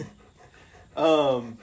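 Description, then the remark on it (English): A dog pants softly, then lets out a brief voiced, whiny breath that rises in loudness for about half a second before fading. No one speaks over it. “As my dog joins the pod.”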